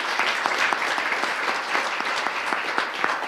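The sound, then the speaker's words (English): Steady applause from a sizable crowd in a room, applauding the members of a search committee, dense overlapping claps sustained at an even level for a few seconds, with no voices standing out. “Will you give that search committee a round of applause?”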